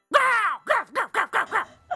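A dog growls and grumbles: one drawn-out, rising-and-falling growl followed by five short, throaty bursts in quick succession, fairly loud, with no one talking.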